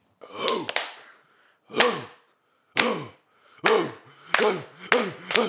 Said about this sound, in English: Iceland. Let's do the Viking clap.